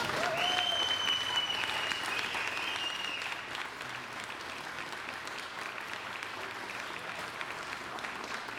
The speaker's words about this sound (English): Let's give one more round of applause for Toby.